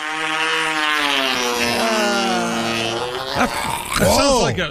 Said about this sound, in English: here he is with his fart of the day.